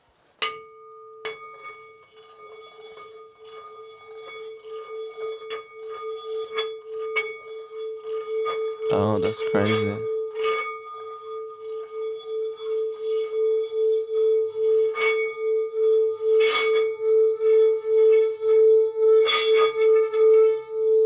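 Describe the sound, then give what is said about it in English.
A singing bowl rings with a sustained, mid-pitched hum and shimmering overtones, its volume throbbing in a steady wobble that grows stronger over time. A person speaks briefly partway through. “Sound bowl.”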